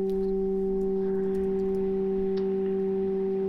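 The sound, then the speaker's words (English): Three pure, steady tones hum together as one sustained chord, unchanging and continuous for the whole stretch, with no voices and only a faint background hiss. “You are hearing three tones.”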